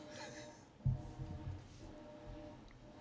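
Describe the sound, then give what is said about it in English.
A washing machine runs, a low rumbling drone with a steady hum and a heavier thump near the start, then uneven churning thuds; no one speaks. “I really thought the washing machine was more quiet than the dryer.”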